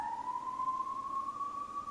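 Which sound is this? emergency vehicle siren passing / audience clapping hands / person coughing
emergency vehicle siren passing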